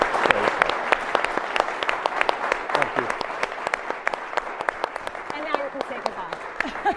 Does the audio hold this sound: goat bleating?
no